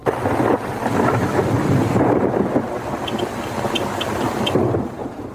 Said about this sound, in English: Five hours of rain has turned a dusty farm into a quagmire. But despite the deluge, most festival goers appear undaunted by this torrent of water.